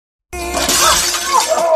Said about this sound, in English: It looks like the Dudley boys have just set up a table because Ben has smashed through a glass one